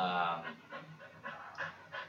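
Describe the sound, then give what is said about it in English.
A female dog pants rapidly, a steady run of short breathy huffs repeating about every half second, with a faint whimpery tone at the start. “The coon's dog panting, yeah.”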